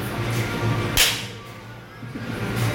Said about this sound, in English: Straight after shaking his hand, I swung sideways and collected all of his genitals in a side slap. And it sounded like this.